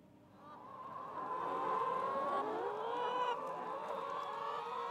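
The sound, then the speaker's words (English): A large flock of free-range hens on a farm in central Victoria, about 2 hours' drive north of Melbourne, scratching around in the dirt, clucks and chatters continuously, a dense overlapping murmur of bird calls that swells after the first second and stays steady and fairly loud throughout. “I can see a huge flock of hens scratching around in the dirt, and they seem like happy chooks, but who knows?”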